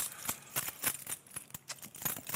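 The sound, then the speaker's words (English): A bunch of keys jangles and clinks in quick, irregular bursts, bright metallic rattles, with no voices. “The sound of keys.”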